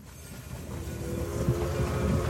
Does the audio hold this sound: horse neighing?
no